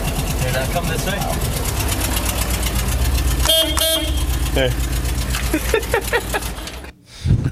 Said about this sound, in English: Did it feel like you're in Miami? A little bit. I like that. I like the horn and the car and the beeping. It made me a little hungry.